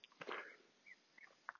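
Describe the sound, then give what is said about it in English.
A few faint, scattered bird chirps sound outdoors during a walk, short and irregular, over a soft breezy hiss with a brief rustling burst near the start. “A little bit of breeze in the background and the birds.”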